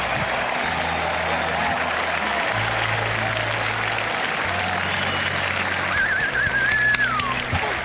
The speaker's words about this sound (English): So he's walking up there. The crowd's going bananas. B-A-N-A-N-A-S. Got the hat off. They're cheering. You hear it.